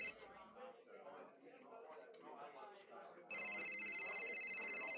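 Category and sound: signal or alarm, mobile phone ringing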